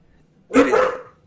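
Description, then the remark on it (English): A single loud dog bark, slightly drawn out, breaking an otherwise quiet moment with no one talking. “I swear to God, dog. Shut up”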